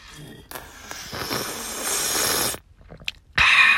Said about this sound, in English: Who else slurps their coffee? When no one's around, everyone, when people are around, you're doing this when you're slurping.